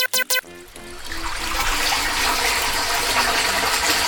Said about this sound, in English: Oh, you know, just reverse the water from your hot springs, and instead, I am pumping gross, nasty sewer water your way.